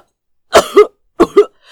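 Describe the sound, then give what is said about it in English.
Two sharp, sputtering coughing fits, each a quick double hack, fairly loud with a brief pause between them, as a man chokes on a sip of wine. “Unfortunately for him, he had also been halfway through a sip of wine and immediately began to choke.”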